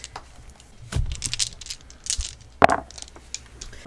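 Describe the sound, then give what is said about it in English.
Several dice, a red and two purple difficulty dice for a computers check, tumble and clatter across a hard surface, a scatter of light rattling clicks followed by one sharper knock before they settle. No one speaks. “You're going to roll a red and two purples as a difficulty.”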